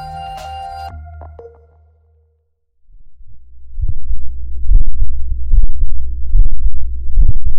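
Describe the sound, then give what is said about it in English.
A few bright musical tones fade into a pause, then a muffled human heartbeat, recorded by a fabric microphone in the vest the person was wearing, thumps in a steady rhythm, about five deep beats over a low rumbling background. “This is a person's heartbeat. And it was recorded by their vest.”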